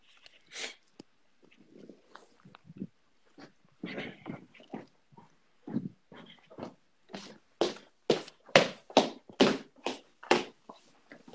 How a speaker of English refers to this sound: Do I hear stomping? Not me.